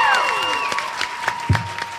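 A live audience at the Women of Marvel panel claps and cheers, dense steady applause mixed with high shouts and whistles, a few sharper bursts standing out near the end.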